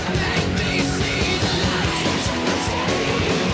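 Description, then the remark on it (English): Loud, dense live industrial rock with harsh screamed vocals buried in a wall of distorted instruments and pounding drums, playing continuously without a break. “Screaming there.”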